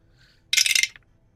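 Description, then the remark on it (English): A quick clatter of dice tumbling across a hard tabletop, rolled for damage in a tabletop game, a burst of rapid small rattling impacts lasting under half a second before settling into quiet. “Oops, that was the wrong dice.”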